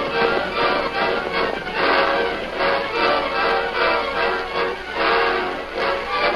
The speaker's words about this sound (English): Now, Kemosabe, train come near now. We'll ride to the top of the hill and wait there.